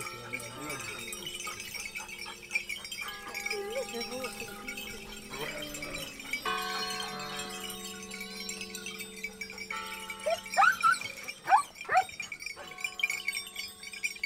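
The bells of about 50 sheep, being brought down for milking to a village above Carrara in the Marble Mountains, Tuscany, clank and tinkle in a dense, uneven jangle while a church bell tolls steadily underneath to signal a funeral, with occasional bleats and sharp clinks rising above the mix.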